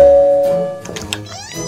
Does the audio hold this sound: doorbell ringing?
yes